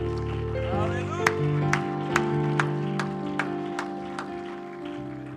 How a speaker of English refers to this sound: If you'd give him one more hand clap of praise before you're seated tonight.